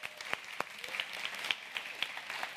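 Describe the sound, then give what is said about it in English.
An audience applauding the production arts team: many hands clapping in a dense, steady patter, with a few sharper claps standing out. It sounds moderately loud, with no talking. “If you would give those guys back there a big hand clap.”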